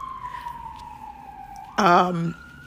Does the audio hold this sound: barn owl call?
no